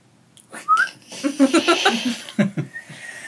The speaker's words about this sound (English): Whistling is tricky. Inhale whistle? Is that what you're doing? Inhale whistle?